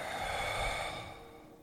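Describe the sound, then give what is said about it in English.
A long, airy exhale blown out through the mouth by a person seated for a deep-breathing exercise, steady, with a soft breathy hiss that gradually fades over under two seconds, no talking. “And once we're in that position, let's take three deep breaths in through the nose, out through the mouth.”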